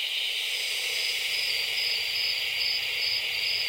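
night insects chirping

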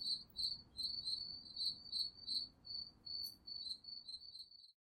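crickets chirping

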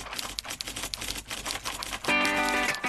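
typewriter keys typing

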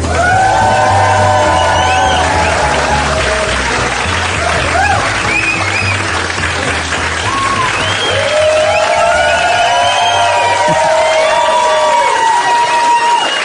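audience cheering

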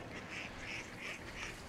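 ducks quacking

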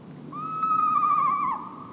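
eastern screech owl call

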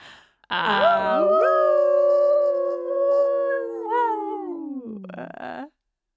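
howling

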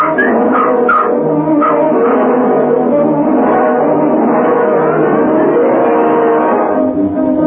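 dog barking and whimpering

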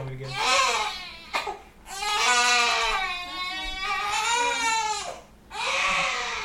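baby crying

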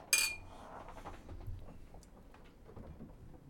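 beer glasses clinking

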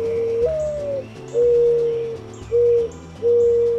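mourning dove cooing

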